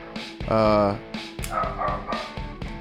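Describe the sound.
A dog barks repeatedly in the background, a series of sharp yaps and whiny, drawn-out barks at moderate volume, mixed with the murmur of people talking.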